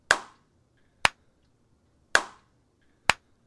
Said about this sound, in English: But this is a before and after. Let's see if we can hear this. A clap before and after.